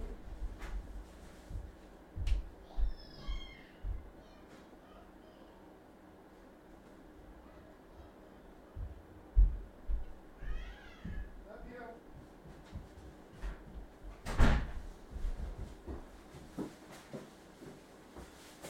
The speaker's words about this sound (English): I have a dog who would like to go upstairs. He's trapped downstairs with me, unfortunately for him. Oh, he's fine. Do you want to go upstairs? Yeah, door got closed on you, buddy. So let me just, hey. So I'm going to let this dog upstairs real quick.